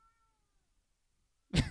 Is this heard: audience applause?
no